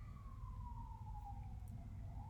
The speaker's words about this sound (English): And before we feel any better, let's just hold space for the siren going by right now.